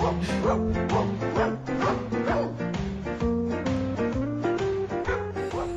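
Dog barks and yips are pitched and sequenced into a bouncy melody, playing continuously over a steady musical backing with rhythmic, evenly spaced notes throughout.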